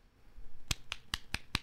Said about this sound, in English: That's a clap.